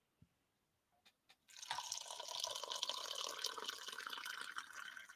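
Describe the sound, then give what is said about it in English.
A few soft clicks and taps, then hot water pours steadily from a Stanley insulated flask filled about 24 hours earlier, a continuous splashing stream that keeps going to the end with no talking. “It's still full of water. And it's still full of water.”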